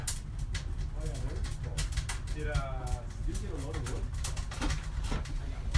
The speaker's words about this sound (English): That's a big bird.